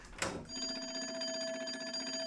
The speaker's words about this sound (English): Polly, what's with the alarm? I'm sorry, Johnny. I didn't have time to stop it when I woke up this morning. Yeah, well, stop it now. You're frightening the iguana.